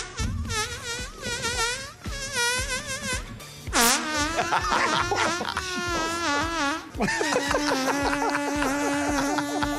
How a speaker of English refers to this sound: Let's hear what we talked about next. The longest fart. Are you ready for it? No. Kinda. Here we go, New Zealand.